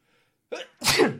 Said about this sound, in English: Oh. Gesundheit.